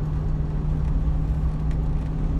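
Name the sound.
truck driving on highway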